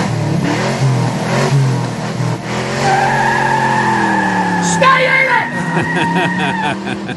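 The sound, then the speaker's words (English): A combustion engine car revs loudly, its pitch climbing through several hard pulls before a rougher, gritty burst of power near the end. “going against the grain, Rick, of 130 years of combustion engines. But are they ready to lose this?”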